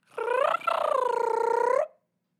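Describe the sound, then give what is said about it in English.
A cicada-style sound effect, played to introduce the last weekly wrap-up: a single raspy, rapidly pulsing buzz with a strong mid-pitched tone. It dips briefly, then holds steady for over a second before cutting off. No one speaks. “I call it the cicada.”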